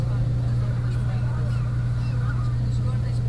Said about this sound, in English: Riding the bus